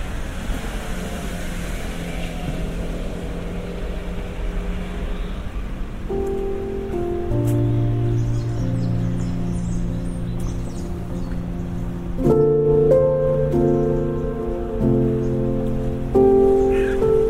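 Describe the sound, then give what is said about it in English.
Steady rain patters on surfaces in Lincoln's Inn Fields, wetting a statue of a woman with nine children, a dense hiss with scattered drops, and after a few seconds sustained musical notes rise over it and grow louder toward the end. “Now they're all a bit wet with rain.”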